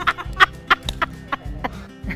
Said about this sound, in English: Watch out for the pigeons. They'll be part of the fun.